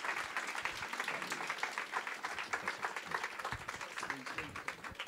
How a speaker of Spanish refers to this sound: Un aplauso al Señor por él. Strong applause for him.